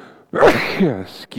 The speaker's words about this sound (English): Hopefully I don't sneeze, because here it comes.